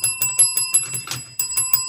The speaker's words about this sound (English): I'ma tap that bell.